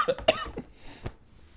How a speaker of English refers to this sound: All right. I coughed right into the mic. It's cool.